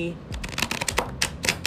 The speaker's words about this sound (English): Yeah, and I'm saying that was a good little shuffle. I can only shuffle big cards. Little cards are kind of tricky for me. A little tricky.